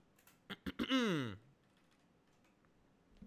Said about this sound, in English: I'm typing this with one hand because I'm holding my microphone with the other.